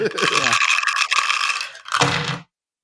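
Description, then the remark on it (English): Dense, crackly crunching of chips from a bag that came with dip fills about two seconds, a brief dip in the middle before a final burst, then it cuts off into silence. “Oh, it came with a bag of chips and some dip.”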